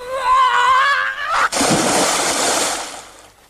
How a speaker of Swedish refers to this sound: För det är i alla fall den där när hon precis är i luften på väg ner i vattnet.